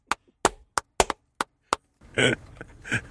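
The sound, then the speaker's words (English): Seven sharp hand claps in an uneven rhythm, loud and crisp, followed by a burst of noisy, breathy sound in the final second. “I was waiting to clap. Oh, let's clap.”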